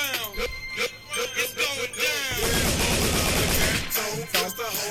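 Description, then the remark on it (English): A rapid burst of gunshot sound effects erupts loudly in the middle of a music track, lasting about two seconds before the beat carries on. No one speaks. “I got to time this gunshot right.”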